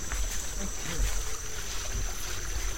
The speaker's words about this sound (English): A couple people were saying it did rain a little this morning, so we might have some more water flow in the weir. We might not. Yeah. It wasn't very much, and steep enough here that the water flows through pretty fast.